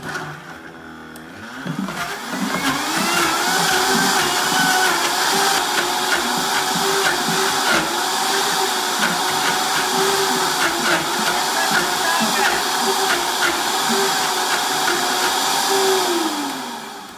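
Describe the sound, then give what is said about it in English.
A blender whirs loudly and steadily for about fifteen seconds, its motor pitch wavering as thick strawberry, banana and vanilla ice cream ingredients with about 3 tablespoons of coconut water churn. It winds down at the end. “So let's see how it blends.”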